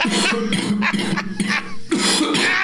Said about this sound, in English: Now, if you will excuse me, I have a wet hacking cough to deliver on the air.